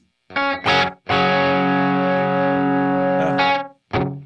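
A clean electric guitar tone run through an effects pedal with the reverb turned off, giving an accidental bell-like tone: a couple of quick plucked notes, then one long, rich sustained note ringing out, and a brief final note, loud.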